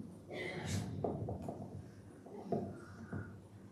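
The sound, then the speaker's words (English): Muffled rustling and knocking as a microphone cable is handled and untangled, with several soft thumps and scrapes over a few seconds and faint voices in the background. “Oh, it's tangled.”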